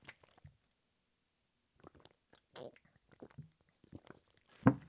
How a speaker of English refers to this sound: That's me drinking water. Yeah, drank some water.